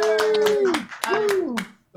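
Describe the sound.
A short burst of applause: quick, irregular hand claps under two drawn-out cheering voices whose pitch slides downward, loud throughout, then cutting off abruptly.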